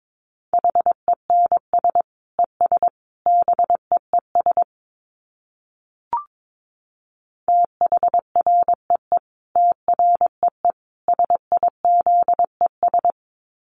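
Morse code sent at 22 words per minute: a steady mid-pitched tone keyed in quick short and long beeps, two runs of characters split by a brief pause with a faint click.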